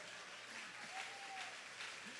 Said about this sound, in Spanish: Ella fue la valiente, un aplauso.